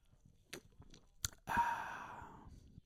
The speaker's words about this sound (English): Here's a sip of beer for you.